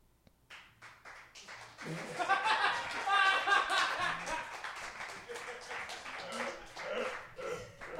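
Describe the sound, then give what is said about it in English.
An audience breaks into clapping mixed with laughter and a few whoops, building quickly after a quiet start, peaking midway, then thinning out toward the end. “I'm not gonna fuck you because you clapped, though.”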